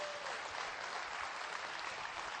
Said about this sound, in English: Somebody give the Lord a hand clap in this house.